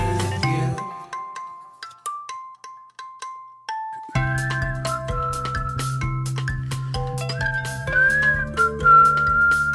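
Someone whistles a clear, lilting melody, starting with sparse, steady notes on its own, then continuing over a fuller instrumental backing that swells in partway through.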